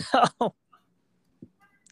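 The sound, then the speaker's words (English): Two quick coughs in a row, short and fairly loud, followed by near silence with only faint small noises. “I was just coughing there.”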